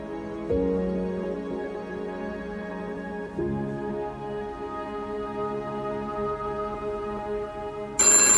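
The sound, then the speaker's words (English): A telephone rings loudly with a call from Bob Saget, its bright, sustained tone repeating in two long rings, with no one speaking, before a sharp noisy burst cuts in at the end. “I don't know why that phone scared me so much.”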